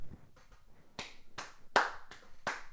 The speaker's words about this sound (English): I clap at him like, congratulations, bro, you beat me, like, fucking cool, dude, like, order your fucking KFC before me, like, I don't give a fuck.